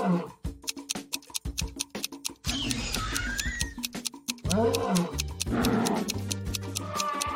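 Lions roar and growl in several loud, rumbling bursts, mixed with sharp snapping noises and a few higher animal cries over roughly seven seconds.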